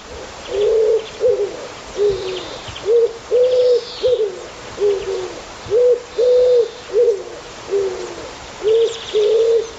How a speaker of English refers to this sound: Wood pigeon. This is a common wood pigeon.